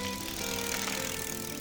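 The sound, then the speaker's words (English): A cyclist rides steadily over a gravel dirt road in farm country, the tires making a continuous, even crunching hiss with a faint low hum underneath and no voices. “So there was a cyclist out riding the dirt roads, gravel grinding, out in farm country.”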